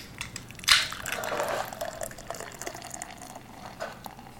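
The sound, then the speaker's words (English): A can of Mexican-style lager with lime, from a brewery in Nashville, Tennessee, cracks open with a sharp hiss, then the beer pours steadily and fizzes with a frothy, bubbling texture. It is moderately loud, with no voices. “Mine got super frothy.”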